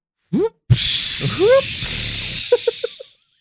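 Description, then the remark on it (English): A loud, steady hiss of steam rushes out of a machine for a couple of seconds and then tapers off. A person's voice exclaims over it, with a few short syllables near the end. “So much steam built up.”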